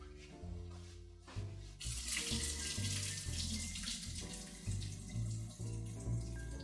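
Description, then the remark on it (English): After a brief pause, water gushes steadily into a sink as potatoes are strained through a colander, a loud continuous splashing rush over a low, steady musical background. “So let me go and strain my potatoes now in a colander, and then I'll be back, add them to the pot, and see where we are.”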